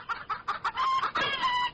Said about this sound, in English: Chickens. They've got an elementary school in Fair Oaks Ranch, Texas, has come up with the way to get rid of these swarming crickets, and they have chickens just running around randomly, and they're pecking away and eating all the crickets.